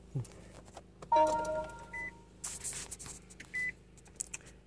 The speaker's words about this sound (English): And I went into we pulled up to the building for the meeting, and I got out of the car and, oops, my car just shut off.